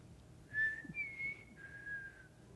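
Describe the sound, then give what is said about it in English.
A person whistles a short three-note family call, each note held and sliding slightly, clear against a quiet background with no talking. “She said, my kids can't quite whistle that well, so they're not really into it either, but I like the family whistle.”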